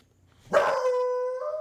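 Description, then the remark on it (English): A dog named Opie, seeing another dog, lets out one loud, drawn-out bark that stretches into a sustained, tonal howl-like note, with no one talking. “He's going to do that for a while if he keeps seeing that dog.”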